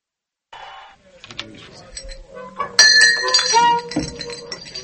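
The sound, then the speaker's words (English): Glasses clinking together several times, bright ringing tones stacking up, with a murmur of voices underneath and some shuffling handling noise. “Hey, look up for my glass over there.”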